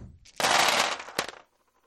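A large handful of dice, a bucket of dice rolled for attacks in a tabletop game, tumbles and clatters for about a second in a dense, rattling burst, ending with a sharp final knock before falling silent. Fairly loud, with no voices.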